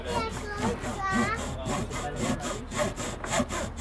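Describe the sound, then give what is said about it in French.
A hacksaw rasps back and forth in quick, steady strokes, about three per second, fairly loud, with voices murmuring underneath. “Ah, mais si, carrément. Une scie à métaux.”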